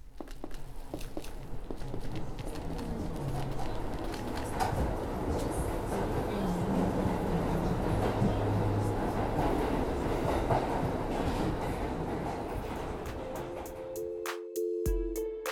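A subway train rumbles steadily, a dense low roar with rattling, clattering wheels and metallic squeals, sustained for about fourteen seconds before a short tonal chime or hum near the end.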